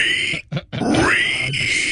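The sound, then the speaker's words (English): A person imitates a pig's squeal: loud, strained, high-pitched vocal bursts broken by a brief pause, then one long sustained squeal that rises and wavers before cutting off. “So not a pig oink, but a pig squeal. I would do squeals.”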